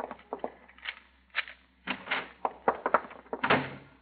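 door being opened

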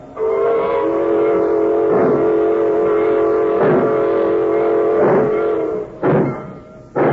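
freight train pulling out

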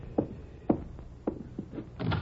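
door being opened

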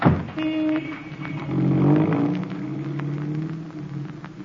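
car driving off

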